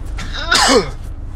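A single sharp sneeze from a person driving a car, with a brief inhaled buildup and a loud explosive release, over a steady low rumble like a car engine.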